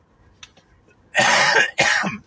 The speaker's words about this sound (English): I'm sorry about the coughing. I'm going to stop apologizing because I feel like I'm bringing attention to it, but I'm sorry. You know how, like, when you get that fucking tickle in your throat?